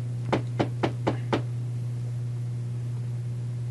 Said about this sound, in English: The door to the office is shut. I'll knock on the door.